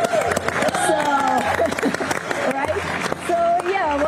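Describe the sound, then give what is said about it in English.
A crowd claps in a dense, irregular patter that continues throughout, with voices calling out and cheering over the applause after the DART spacecraft impact on the asteroid Dimorphos, the first planetary defense test. “I definitely think that, as far as we can tell, our first planetary defense test was a success, and I think we can clap to that, everyone.”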